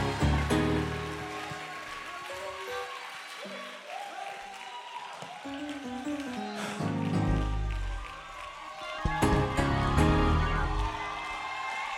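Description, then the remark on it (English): An audience clapping hands together in a dense, steady wash of applause that keeps going, with shouting voices and cheers rising through the noise, swelling louder near the end. “Clap your hands one more time and give him a great big praise in this building.”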